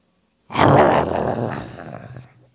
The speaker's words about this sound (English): That wasn't a fart. No one heard anything. Me either. Me either. So you definitely just farted.